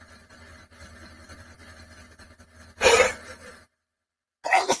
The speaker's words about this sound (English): Why did you sneeze in your palm like that? That's disgusting, man.